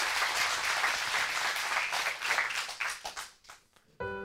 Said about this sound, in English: And can we just give Dan just a round of applause? Amen.